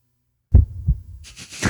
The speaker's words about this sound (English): Is that the heartbeat of your dick? What is that?